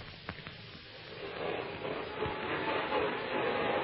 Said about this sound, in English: Sounds like a vacuum cleaner. Yes, it does. On the other side of the door.